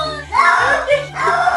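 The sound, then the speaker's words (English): A male cat screams in two drawn-out, wavering yowls that sound uncannily like someone shouting "no," loud and strained, with low hum beneath, as he resists taking a bath. “He's screaming the word no because he doesn't want to take a bath.”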